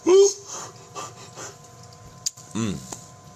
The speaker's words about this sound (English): Couldn't stop the yawn.